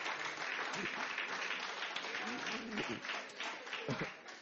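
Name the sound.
church audience applause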